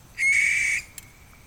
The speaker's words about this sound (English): And remember what the guy said about the sound that it made? Yeah, a screech, like a bird. This is what a barn owl sounds like.